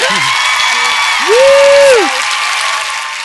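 A crowd claps steadily and loudly throughout, with a long rising-and-falling whoop or whistle riding over the applause midway and some scattered cheering voices.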